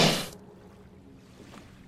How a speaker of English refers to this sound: For one moment, everything hangs still. Just the sound of waves slapping the hulls of our kayaks and the hulls of the ships.